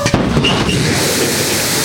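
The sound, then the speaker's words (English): The engines of Blue Origin's New Shepard rocket roar at liftoff from West Texas on the company's first human flight, with Jeff Bezos aboard, in a loud, steady, rumbling blast with a crackling, hissing edge. It is sustained for the whole moment with no voices over it. “That rocket taking off from West Texas on board the world's oldest and youngest astronauts ever.”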